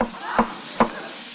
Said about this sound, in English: Holy. What was that? What, there's someone in that deck. Yeah, someone knocked back. Someone knocked back.